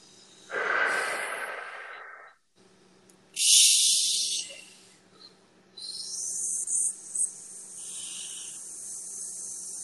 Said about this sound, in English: So we're going to breathe out again, move if you want to.